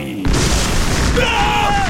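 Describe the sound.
A sudden, loud thunder clap during a storm bursts in after a brief moment of quiet, then rolls on as a heavy, deep rumble. A voice briefly sounds faintly over the tail.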